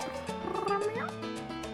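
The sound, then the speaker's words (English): A single drawn-out cat meow rises and falls in pitch near the middle, heard over a steady, sustained musical background at moderate volume. “This episode of Not a Couple was recorded in front of a live studio audience of one cat.”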